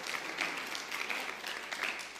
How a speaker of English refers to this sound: If you believe it, give the Lord a hand clap of praise. Amen.